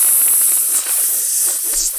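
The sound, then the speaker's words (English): A person voices a long, steady creature-like hiss, a bright breathy rush of air held for about two seconds with no words or other sounds. “Oh, yeah, it just hisses at you.”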